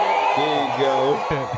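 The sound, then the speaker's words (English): A crowd booing in a loud, sustained, low droning chorus of many voices, wavering slightly in pitch and lasting under two seconds, like WWE wrestling fans booing. “That sound like WWE booze.”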